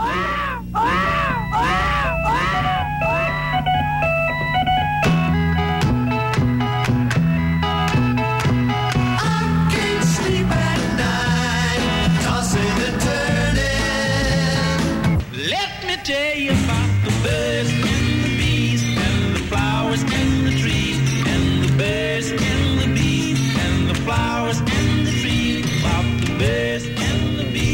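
A novelty car alarm: repeated wailing siren-like vocal sweeps rise and fall, then a loud, steady band track continues with a singer screaming over it throughout.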